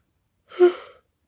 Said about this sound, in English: I didn't apologize for the yawning yet, sorry. I say a lot and I yawn for long periods of time. It just happens when I talk a lot. I don't know why.